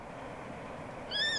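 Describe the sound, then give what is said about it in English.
A single thin, high bird call rings out near the end, brief and clear above a steady background hiss, like a flight call passing overhead at night. “And this is what it sounds like at night.”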